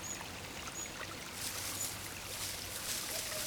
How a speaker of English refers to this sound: Oh no, a creek! And the only way across is to balance on some rocks. They look slippery.